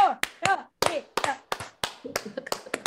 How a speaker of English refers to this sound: We were trying to decide where to begin and we decided we're going to begin with a slow clap